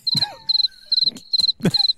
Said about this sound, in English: Cricket, cricket, cricket, cricket.